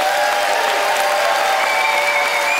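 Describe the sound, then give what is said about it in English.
Steady, sustained applause from an audience picking the winner of a debate on fine dining by applause, a dense wash of clapping at an even loudness throughout, with a few faint cheers or whoops carrying over the top and no talking. “Audience, it is up to you to pick a winner by applause.”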